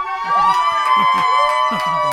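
Several children shout and scream over one another behind the hosts at a grandmother's house on Christmas Day. Their high-pitched, wavering cries hold at a constant loud level, with short sharp bursts popping through the noisy chatter.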